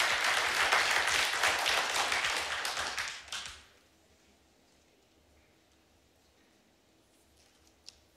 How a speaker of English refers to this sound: Amen. We can clap for that.